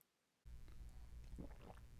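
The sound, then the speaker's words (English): After a moment of silence, a wet gulping sound as someone swallows water, with a low throaty rumble and a couple of squishy mouth noises. No one speaks. “Oh, the first thing we got is that beautiful sound of you swallowing water.”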